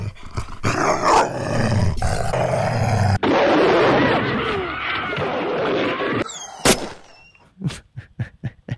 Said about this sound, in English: Joe Biden had to send one of his two dogs back from the White House because it bit a security guard there, a Secret Serviceman. I think the dog attacked him. Maybe it's got the audio from it.